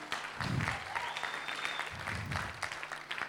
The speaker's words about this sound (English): I think somebody clapped. That's the right thing to do. Now you clap.